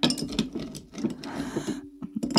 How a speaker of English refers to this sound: First, I'm going to add some ice.